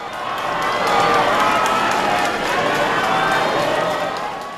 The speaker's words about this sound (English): Abe's funeral was held on Tuesday. Thousands of people lined the streets, clapping and bowing to pay him a final tribute as his hearse drove by.